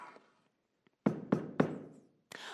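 Three solid, evenly spaced knocks on a wooden door ring out loud, each with a short hollow decay, then one more thump follows after a brief pause.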